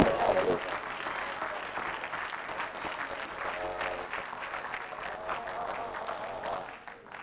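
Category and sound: crowd, audience clapping hands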